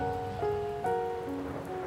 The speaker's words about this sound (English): Is that rain? Yeah, and it's a thunderstorm too.